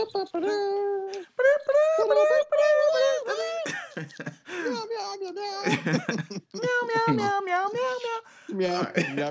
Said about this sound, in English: That's my ringtone.